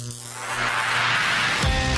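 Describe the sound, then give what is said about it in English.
An old vacuum-tube radio warms up at the start of a live broadcast on Georgia Radio: a steady low electrical hum with hissing static that swells louder over a couple of seconds, continuous, with no voices. “The vacuum tubes are warming up.”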